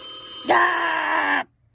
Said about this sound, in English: One small report from Jim O'Donnell and his phones are ringing off the hook,